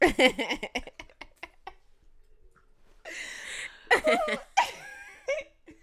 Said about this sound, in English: My damn dog. I told y'all. Piece of work.